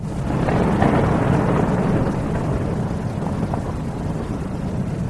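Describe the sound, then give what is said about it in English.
Steady, heavy cold rain pours down on the roof of a house in a continuous wash of noise, backed by a deep, low rumble like thunder. It stays loud and even throughout, with no voices. “The cold rain is coming down briskly, tapping on the roof above the quiet house.”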